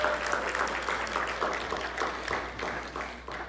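A church audience applauds a man steadily, many hands clapping in a dense, continuous patter that holds fairly even in loudness for a few seconds before easing slightly at the end.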